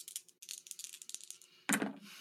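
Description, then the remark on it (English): Dice rattle and click in a quick, uneven clatter, then a louder burst of tumbling as they land and settle, rolled in a tabletop roleplaying game to use the force and coming up 8. A faint steady hum sits underneath, with no voices. “Oh, okay, it's an 8 on the dice, minus 1, it's a 7.”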